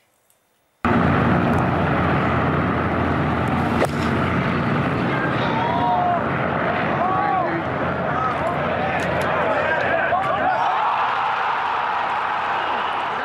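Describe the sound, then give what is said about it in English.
At the PGA Championship golf tournament, after a moment of quiet, a crowd erupts at Michael Block's hole-in-one shot into loud, sustained cheering, a dense roar with scattered whoops and shouts that carries on steadily for over twelve seconds. “Cheering you here at a basketball game, not at a golf tournament. That was a hole-in-one shot by Block, a 46-year-old club pro who teaches golf lessons at a public course in California”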